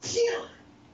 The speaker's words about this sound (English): did your wife just sneeze? She did.